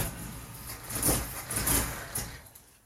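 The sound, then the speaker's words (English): A car engine, low on gas and filled with leftover Gatorade, rumbles and sputters in a few uneven bursts, then loses power and fades out as the car dies on a gravel road. No one speaks. “Now my car is dying, and I'm thirsty for some Glacier Freeze.”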